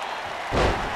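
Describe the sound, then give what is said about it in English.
A single heavy, booming thud as one wrestler picks up another and slams him onto the wrestling ring mat lands midway through, loud, over a constant roar of crowd noise. “And slams him down.”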